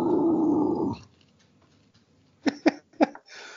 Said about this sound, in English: It wouldn't be a podcast without somebody growling.